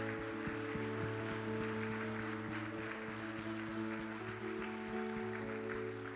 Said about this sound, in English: He just got back from a one-year deployment, so would you guys just give him a hand clap of appreciation?